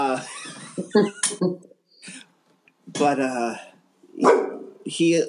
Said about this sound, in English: And I'll come back, you know, a few minutes later, Jojo, I don't even know what you're barking at.